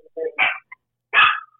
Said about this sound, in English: Is that your dog or is that one that you rescued? No, that's not mine. Oh. Do you know who... I'm sorry, she's so nervous. Do you know who she is?